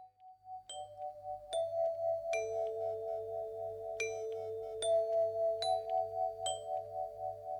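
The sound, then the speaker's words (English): A doorbell chimes a repeated ding-dong at the start of a song, ringing clearly several times in a steady pattern over a soft, low rhythmic pulse, with each bright tone lingering as it fades. “And it starts with a doorbell.”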